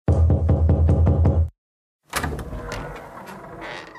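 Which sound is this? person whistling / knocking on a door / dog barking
knocking on a door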